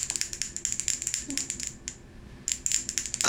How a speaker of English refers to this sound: When we ring the bell, it's the same for her if I close the bell and ring it, uh-huh, or if I ding it like a bell.